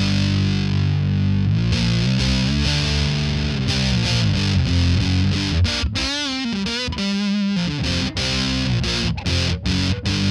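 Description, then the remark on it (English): A heavily fuzzed electric guitar through a fuzz pedal on its Pi setting, a buzzy, angry-bees fuzz, plays chords and bent, sliding notes with thick sustain, loud and continuous, with no talking. “Here's the Pi setting. And that's got more of like your Angry Bees kind of fuzz sound.”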